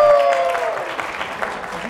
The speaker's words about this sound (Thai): ต่อมาฮะเราสลับมาสายบรรพชีวินบ้างขอเสียงชาวบรรพชีวินหน่อยฮะปรบมือหน่อย